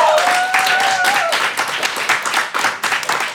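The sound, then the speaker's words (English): A loud round of applause from a small group for both competing teams at the end of a scored game round: dense overlapping claps, with a brief whistle early on before the clapping thins toward the end. “A round of applause for both of our teams.”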